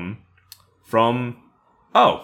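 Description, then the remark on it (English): A single soft, sharp click of a computer mouse as someone clicks on a link, in a quiet moment, followed by someone speaking. “I now clicked on the chartable link.”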